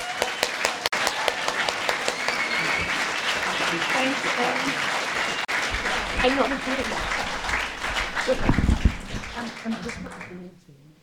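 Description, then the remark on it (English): A crowd applauds steadily for about ten seconds, a dense wash of many hands clapping, with some murmured voices and a few whoops underneath before it fades out, applauding Counterspin and the team at an event in Nelson. “But a huge round of applause for Counterspin and the team.”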